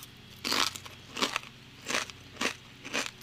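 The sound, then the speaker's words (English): Crunching on kettle chips, with five loud, crackly bites at a steady chewing pace and quiet pauses between them. No one speaks. “"Is kettle chips a good source of carbon fiber in my diet?"”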